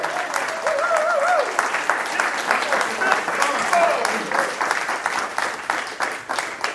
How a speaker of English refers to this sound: And in this case, we are live at the amazing Magnolia JS. This is the first time we're doing this live, which we're really excited about. So now is your cue. Woo! Applaud. There we go. Yes.